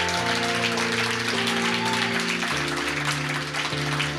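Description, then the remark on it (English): A church audience claps and shouts at the preacher's urging in a dense, steady wash of noise, underneath sustained organ chords that shift a few times. The crowd sound is loud and continuous throughout. “Shout like you believe it. Clap like you believe it.”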